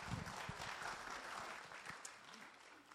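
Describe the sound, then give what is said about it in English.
A church audience claps steadily for a few seconds as a speaker comes up to the stage, a dense patter of many hands, with faint murmuring voices mixed underneath. “I'd like to give him a hand of applause as well, just like you gave to me, so thank you.”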